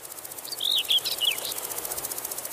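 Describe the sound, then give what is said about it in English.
A male bush cricket sings a high, thin, steadily pulsing trill that runs throughout, with a few brief bird-like chirps breaking in near the start. “It's generally the male bush crickets and grasshoppers that do the singing, and they do it partly to attract the attention of females, but partly also to demonstrate their prowess in competition with other males.”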